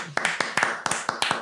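A short burst of hand clapping, about nine sharp claps in an uneven rhythm, moderately loud, with no talking over it.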